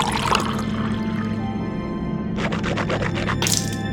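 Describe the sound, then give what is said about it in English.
Wet liquid sounds of water swishing and sloshing as someone rinses their mouth with water, with a quick run of rhythmic gurgling bursts near the end. No one speaks. “Here's some water to rinse your mouth with.”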